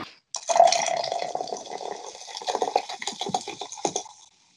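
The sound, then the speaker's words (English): Liquid pours out in a steady stream for about four seconds, gurgling and splashing with a faint glassy clink before it trails off abruptly. “That's your dignity being poured out.”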